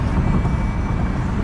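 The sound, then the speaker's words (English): A steady, deep engine-and-road rumble fills a car's interior while driving home from work, constant and fairly loud throughout, with a faint hum sitting above it and no distinct events. “This one is going to be the In the Car with Angie version, as we all know and love.”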